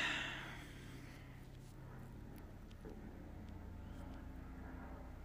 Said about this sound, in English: there's some kind of plane thing going over my house. Sorry, I got distracted.